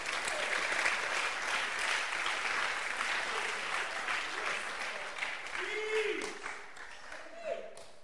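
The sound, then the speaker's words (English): A church audience claps their hands at the preacher's call during a sermon, a loud, dense, steady wave of applause lasting the whole stretch, with a few voices calling out over it toward the end. “Clap your hands for substantial blessings.”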